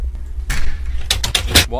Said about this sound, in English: I knocked on it. Don't knock on doors, you weirdo.